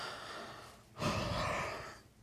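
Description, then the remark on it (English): A person does a deliberate, exaggerated yawn: a drawn-out breathy inhale, then a louder, airy exhale lasting about a second, with no talking. “How about a yawn? Would it be a yawn?”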